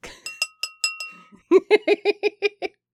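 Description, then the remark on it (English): A bell rings in a quick series of bright metallic strikes, first a handful of higher ringing tones with a lingering hum, then about eight faster, lower clangs, with no voices. “Yeah, together they always need the bell. Hang on. Scandal bell.”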